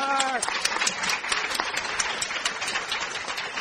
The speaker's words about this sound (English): And a round of applause for the guy that put this together,